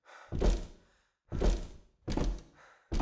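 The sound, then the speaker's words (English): Four heavy, booming slams as organ piles grind and slam against a closed wooden door at uneven intervals, each a loud low thud with a brief rattling decay before the next blow. No one speaks. “He hears the organ piles continue to grind and slam against the door, but it stays closed.”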